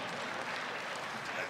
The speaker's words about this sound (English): And a lot of you saw him inducted into the Hall of Fame, MMA legend, Don Fry. Nice round of applause for Don. Yes! Don Fry, ladies and gentlemen. UFC legend.